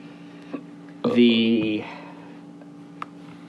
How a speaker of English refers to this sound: Your burp made me confused. I literally only burp when we're recording.